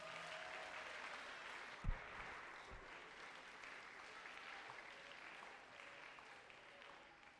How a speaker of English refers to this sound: Are you blessed this morning? I said, are you blessed this morning? If you are blessed, give Jesus a mighty clap offering.